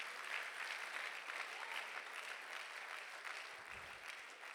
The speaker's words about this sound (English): Oh, hallelujah. Somebody ought to clap your hands and thank God for the house of God.